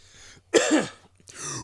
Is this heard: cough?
yes